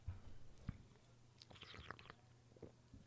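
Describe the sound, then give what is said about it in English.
Quiet wet mouth noises: smacking, slurping and small clicks as a person swishes and tastes a sip of a drink, over a faint low background hum. “You're doing too much mouth movement.”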